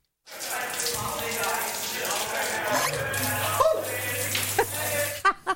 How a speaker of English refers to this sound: It is a cold shower